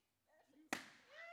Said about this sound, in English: Okay, please be careful. I'm scared. Well, can you not hold it like that? Like, that's very, like, aggressive. It's a balloon. Wait, would you like me to just gently? Yes, just gently. Just pop the balloon